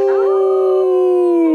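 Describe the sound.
Several people howl together in imitation of a wolf, one long, loud, sustained note that rises briefly at the start and then holds steady.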